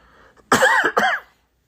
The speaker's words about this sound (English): I mean, excuse me while I cough.